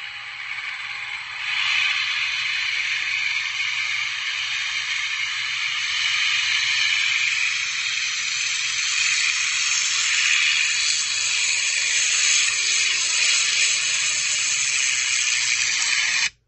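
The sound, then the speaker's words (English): A V12 Merlin engine, made by Rolls-Royce or Packard, on the front of a P-51 Mustang roars steadily for about fifteen seconds. It is a loud, hissing drone with faint whining tones that swells in after a quieter opening moment. “That, my friends, is a V12 Merlin engine, either made by Rolls-Royce or Packard, on the front end of a P-51 Mustang.”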